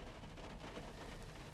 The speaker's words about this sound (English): And it is a rainy Monday morning here. listening to the rain pitter-patter against the windshield of the truck as I record this podcast.